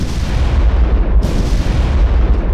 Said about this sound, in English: Then from each black accursed mouth, the cannon thundered in the south.